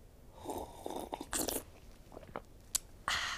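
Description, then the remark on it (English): A loud, exaggerated slurping sip of coffee, with short wet mouth noises and a final sharp slurp at the end. “God, I love this work so much as I sip on my coffee.”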